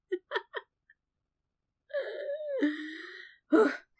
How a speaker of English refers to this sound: Whew, I also just need to breathe more. I, like, don't breathe when I'm talking, you know? Breathing's kind of important. It is. Breathing. I'm just gonna take a second to breathe for a second.